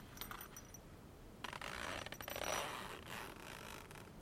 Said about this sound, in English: Here's a zipper sound.